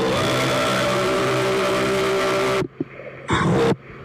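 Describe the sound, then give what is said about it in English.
A wet fart sound effect: a long, loud, buzzy sputter that holds steady for a couple of seconds, then cuts off abruptly, followed by a brief hissy burst after a pause. No one speaks. “That's supposed to be a wet fart noise.”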